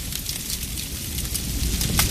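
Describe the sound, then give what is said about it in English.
A spreading household fire in the middle of the night crackles steadily, with scattered sharp pops and snaps over a low, roaring rumble, fairly loud throughout, with no voices. “In the middle of the night, there are two sounds a spreading household fire can make. Here's the first.”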